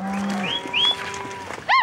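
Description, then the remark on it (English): Several cattle, being sorted by brand or ear tag to their ranches at the Counting Gate, moo over one another, a long low bellow giving way to higher, rising calls, ending with a short, loud moo. No one speaks. “job to read brands or ear tags and call out which cows belong to which ranch.”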